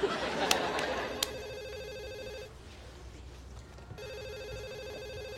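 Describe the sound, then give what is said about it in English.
A telephone rings in two bursts of steady, harmonic trilling separated by a short pause, clear over a low background murmur. “I never have to answer that phone again.”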